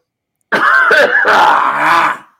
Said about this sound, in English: I don't want to live vicariously through your coughing.